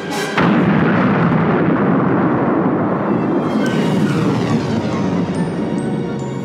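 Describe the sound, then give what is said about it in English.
A huge sci-fi explosion of a space station at the end of a movie bursts in abruptly and becomes a sustained, thunderous roar of rumbling debris, with faint high electronic tones threading through near the end. No one speaks. “Well, that brings us to our next explosion, the Death Star exploding at the end of the movie.”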